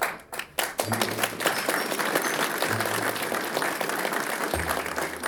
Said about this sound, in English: The audience clapped for Abagnale. Can you friggin' believe that? A round of applause for a con man getting an ethics award?